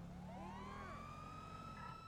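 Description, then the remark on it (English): Police sirens on two cars in a video game wail steadily near Beverly Hills, one of them a stolen police car, their rising tones overlapping, loud over a dense rumbling engine and traffic noise, with no talking. “We're both running our sirens.”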